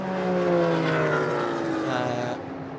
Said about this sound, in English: I told you there was cars out there as they go past underneath at IMSA Radio.